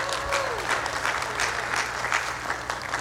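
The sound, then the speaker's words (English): A church audience breaks into steady applause for all the volunteers, dense overlapping hand claps at a moderate, even loudness with no speech over it. “Round of applause for all the volunteers.”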